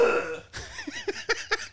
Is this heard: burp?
yes